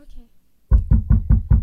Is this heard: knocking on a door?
yes